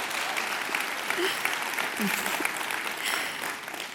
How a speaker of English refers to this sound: Would you give her a hand clap as she goes?